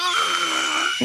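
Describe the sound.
A voice imitates a screaming falcon with one loud, sustained, high-pitched shriek full of harsh overtones. It holds steady for about a second, then cuts off abruptly.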